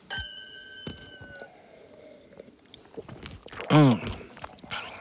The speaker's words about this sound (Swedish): Jag var tvungen att ta en mandel här, man ska egentligen inte tugga i med en mikrofon. Det gör ingenting.